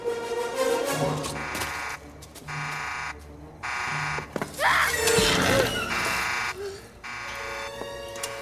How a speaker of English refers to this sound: Well, I wanted to include something else that wasn't animal related, and that is the electric fence alarm.